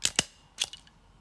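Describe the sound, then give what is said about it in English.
A stapler snaps shut in a quick pair of sharp, crisp clicks, followed by another click and a few fainter metallic rattles, with no one speaking. “Is it a stapler? It is!”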